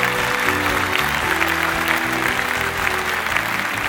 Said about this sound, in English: There are so many people clapping. It sounds like it's raining.